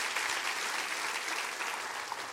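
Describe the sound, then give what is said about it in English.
A church audience claps steadily, a dense, even wash of applause that holds its level throughout without breaks or voices rising above it. “There are some people in our community, go ahead and clap, that's all right, go ahead, that's all right.”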